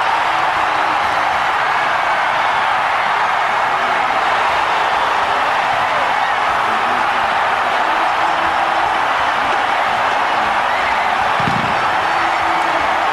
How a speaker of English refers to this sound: Here's Osbaldeson. Lots of leg. It's good. I just got chills, Mike. Me too. Me too. Oh. Let's just listen to the crowd.